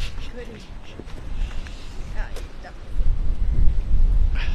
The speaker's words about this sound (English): Oh, good, it's starting to rain.